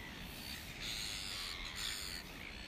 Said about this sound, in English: actually at the Albatross Centre, looking for albatross, but I couldn't find any. So what you can hear is seagulls. So the coastline and seagulls will do for an answer for that one.